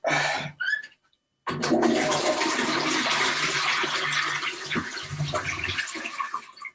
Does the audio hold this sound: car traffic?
no